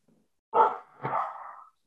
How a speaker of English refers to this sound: Sounds of barking.